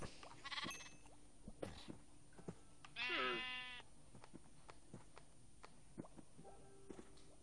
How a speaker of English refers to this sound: There are the sheep. There go the sheep.